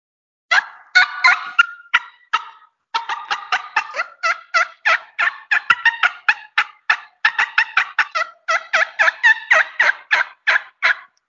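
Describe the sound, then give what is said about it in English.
Rapid, sharp turkey hen cutting notes blown on a thin triple-reed mouth call, loud, a dense run of erratic clucks with brief pauses, no talking. “It's a more triple reed thin call, so it does a good yelp. But we'll do some cutting on it.”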